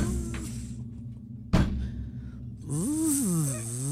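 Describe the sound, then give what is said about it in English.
A robot doctor that has just performed eye surgery gets stuck on a door: its steady low mechanical hum is broken by a single sharp bump against the door, followed by a wavering motor whine that rises and falls over hissing noise. “He just performed eye surgery, but he's stuck on the door.”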